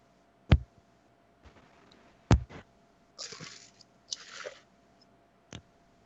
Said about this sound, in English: Oh, I was reverse muting, so I was munching in the mic. I'm sorry. I thought I was muted when I'm...